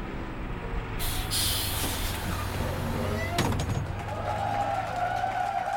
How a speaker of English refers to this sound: On July 17, 1976, the nation let out a sigh of relief as a large Greyhound bus pulled up to the city of Chowchilla, California.